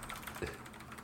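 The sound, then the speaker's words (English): Soft, quick keyboard typing with a handful of irregular key clicks, one slightly heavier tap midway, fairly quiet, with no one speaking, as someone types a tweet. “Sorry, I'm tweeting this now.”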